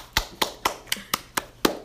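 A single person claps their hands in a steady, brisk rhythm, about eight sharp claps in under two seconds, with no talking over them.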